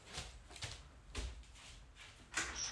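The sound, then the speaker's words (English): A door being opened for a visitor who knocked: a few short clunks and rattles of the handle and latch spread over a couple of seconds, with a louder thud near the end and no one talking. “If somebody fucking knocks on my goddamn door again here.”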